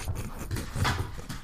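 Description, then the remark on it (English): Dogs bark and whimper in short, excited bursts, one sharper yelp standing out midway, over a low, rumbling background. “The dogs start going ham.”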